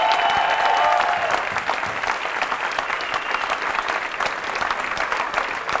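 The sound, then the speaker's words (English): An audience in London applauds steadily, a dense wash of many hands clapping at an even, sustained level for several seconds, with a few faint tonal cheers or whistles near the start. “Let's clap it up for each other and each other's questions.”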